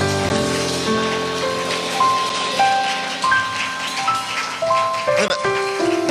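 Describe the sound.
An audience claps steadily in praise to God in a dense, crackling wash of applause, while sustained keyboard notes shift in pitch underneath and a voice briefly cuts through near the end.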